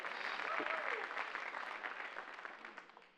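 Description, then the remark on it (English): An audience claps after announcements, a dense patter of many hands that stays strong before gradually thinning and fading out toward the end, with a brief murmur of voices mixed in early on. “So after announcements like that, somebody started to applaud.”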